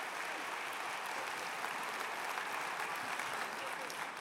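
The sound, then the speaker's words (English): A crowd applauds steadily, a dense continuous wash of many hands clapping at once, sustained without pause and fairly loud throughout, with no distinct voices standing out, as a Hatfield audience welcomes a guest speaker one morning. “So give him a really good Hatfield round of applause.”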